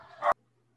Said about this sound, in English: That wasn't me. Someone unleash the hounds. I mean, I have a dog. But that wasn't mine.